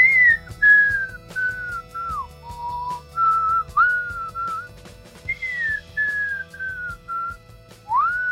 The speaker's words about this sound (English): That's me whistling into a mic pre and blowing it out.